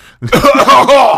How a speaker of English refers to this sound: I'll cough all over.